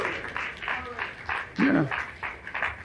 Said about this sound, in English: Clap your hands and shout glory to God.